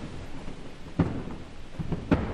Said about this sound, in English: Whoa. Sounds like thunder or even gunshots. That's ice collapsing. Amazing.